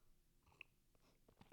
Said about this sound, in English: So I'm going to take a sip of my hot cocoa.